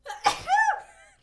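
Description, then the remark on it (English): A single sharp, fairly loud sneeze from a woman: a quick breathy burst followed by a short voiced tail that fades out within a second. “She just dabbed while she sneezed, ladies and gentlemen.”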